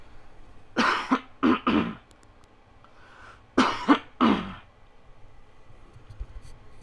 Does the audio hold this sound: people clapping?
no